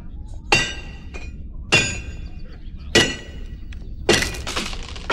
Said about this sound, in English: I mean, in fairness, this blacksmith here, he sees the anvil vibrating and moving as he's hitting it with a tiny hammer. He should probably stop. I mean, also, the whole thing should be metal. Why is the bottom wood?